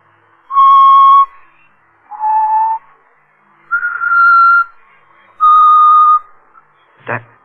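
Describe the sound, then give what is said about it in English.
Someone whistles a slow tune of four long, clear sustained notes at shifting pitches, fairly loud, with brief pauses between them, followed by a short sharp knock at the end. “He's always whistling it.”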